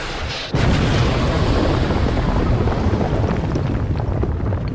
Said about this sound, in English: Right, so here we go. It's about to blow up a helicopter.